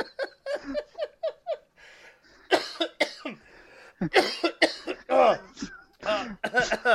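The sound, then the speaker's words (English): A person coughs repeatedly, a rapid run of short hacking bursts followed by louder, rougher coughs and gravelly throat clearing, with no talking. “Sorry, I just coughed up some more of Lex Luger's charisma there.”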